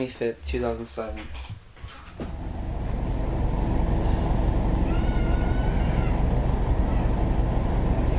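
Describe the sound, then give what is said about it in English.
High-pitched children's screams ring out outside the Comet Ping Pong restaurant at the start, then a steady roar of street traffic takes over, with faint shrieks drifting through the noise. “recorded a video outside Comet Ping Pong, and you can clearly hear children screaming.”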